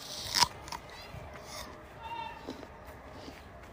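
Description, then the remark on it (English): A single sharp, crisp crunch of someone biting into an apple on a sunny day, followed by quieter chewing and faint background chatter from children. “I've got an apple.”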